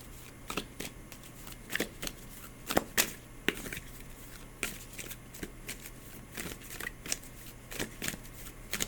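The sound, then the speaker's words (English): A deck of cards being shuffled for a card reading, with repeated crisp riffling bursts and sharp snaps at an irregular pace, fairly quiet against a low steady hum, with no talking. “You're addressing it and closing your eyes non-verbally as I shuffle.”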